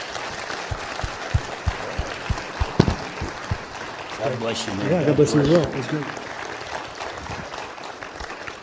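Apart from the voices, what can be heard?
audience applause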